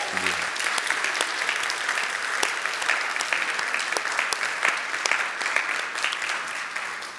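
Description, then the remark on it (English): Sustained applause from a sizable audience, a dense, steady patter of many hands clapping that holds at an even, fairly loud level for the full stretch without voices rising above it. “So you want to clap one more time?”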